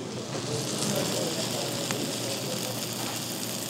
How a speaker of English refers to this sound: And it all comes out on this steaming hot platter. The whole thing smokes up the room and crackles as it comes towards the table.